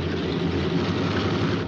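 A steady, loud engine drone with a deep low rumble and broad roar, continuous and unvarying, like a propeller plane, as the plane carrying Victor Laszlo departs in a Bogart film scene, with no voices.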